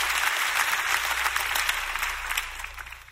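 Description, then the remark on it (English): A standing audience claps their hands together, a dense, steady wash of applause from many people filling the room, with a low hum underneath and no one speaking. “Clap your hands if you're ready for what the Lord is going to speak to you today.”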